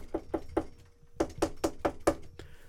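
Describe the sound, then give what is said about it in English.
Knuckles rap on a wooden door: three quick knocks, a short pause, then five more in a steady run, fairly loud with no voices. “And so they knocked on the door.”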